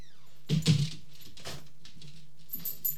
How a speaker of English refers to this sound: And that rattling and thumping you hear is my daughter's dog jumping down because she has to come and say hi to the kitty.